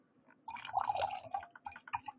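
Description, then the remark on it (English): Boxed wine dribbles out of the bag of an almost empty box in an uneven trickle, with a brief fuller gush followed by a run of separate, bright little drips and splashes at a moderate level. “Oh, see, it starts to dribble, dribble, dribble.”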